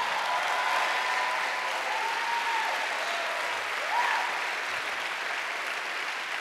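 Sustained audience applause, a steady dense wash of clapping at even loudness for several seconds, with a faint voice or cheer rising briefly within it.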